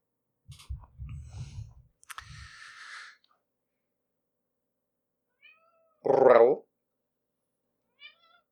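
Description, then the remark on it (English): A cat lets out one loud meow lasting about half a second, preceded by some rustling and handling noise, with a couple of faint chirpy sounds before and after. “Kitty says, read the fucking porn.”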